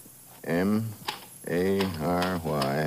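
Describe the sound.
A few sharp mechanical clicks and ratcheting as paper is wound into a typewriter, partly covered by a voice making drawn-out, tuneful vocal sounds.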